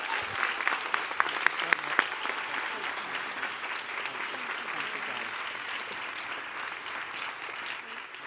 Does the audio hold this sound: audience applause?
yes